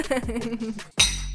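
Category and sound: household object, glasses clinking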